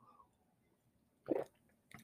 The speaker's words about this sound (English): Excuse me. I got to take a sip of coffee.